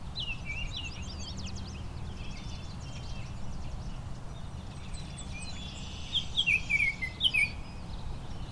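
A songbird sings a varied, intricate song of quick high trills and sharp whistled notes, brightest near the end, over a steady low background hum with no talking.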